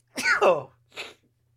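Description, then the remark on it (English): A forceful human sneeze, sneezed live on air: a drawn-out, voiced wind-up sliding downward in pitch, then a short, sharp, hissing burst, loud and alone with no talking. “Hold on. Here comes another one.”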